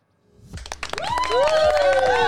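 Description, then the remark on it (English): A few sharp claps start things off, then build into steady clapping joined by rising whoops and cheers from several voices, growing louder and continuing to the end. “Canada clapping.”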